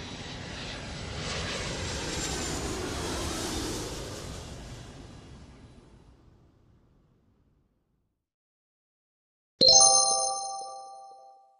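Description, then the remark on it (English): A jet plane roars overhead, its broad rushing noise swelling loudly, then fading over several seconds. After a brief silence, a bright two-tone chime rings out. “But I love the sound of the jet planes. The louder the better for me.”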